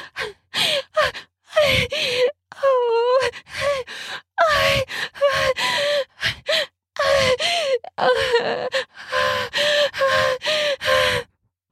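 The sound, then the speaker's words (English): A loud run of rapid gasps and heavy breaths from a person breathing fast and unable to catch their breath during sex, many of them voiced with a moaning edge, repeating in quick bursts with brief pauses and no talking. “I can't catch my breath. I'm breathing so fast as you begin to pound yourself into me harder.”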